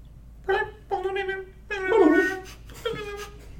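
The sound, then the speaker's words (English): A person's voice imitates the way Animal Crossing characters speak, like a cute puppy babbling, making four short, high, whiny gibberish bursts, with no other sounds around it. “That's what it's like a cute puppy talking.”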